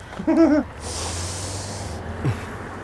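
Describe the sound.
A person imitates the wheezy, asthmatic breathing of somebody in row 15: a short, strained, voiced wheeze followed by a long, hoarse, airy breath and a brief squeaky catch at the end, fairly loud.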